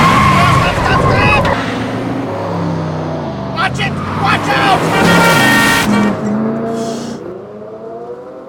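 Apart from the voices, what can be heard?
car speeding and skidding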